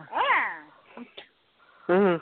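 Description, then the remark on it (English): A cat lets out a loud, drawn-out meow that rises and falls in pitch, then after a short quiet stretch a second strong, steady cry or voice follows. “And since cats hate rats, he's probably chiming in.”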